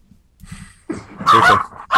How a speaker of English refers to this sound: Hey, there are the puppies. Yeah, the puppies are excited.